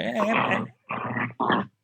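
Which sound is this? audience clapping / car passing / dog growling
dog growling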